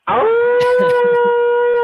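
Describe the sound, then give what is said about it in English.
A person howls like a wolf, a single loud, sustained note that swoops up at the start and then holds a steady pitch for nearly two seconds. “Give me the lone wolf.”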